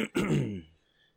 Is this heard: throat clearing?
yes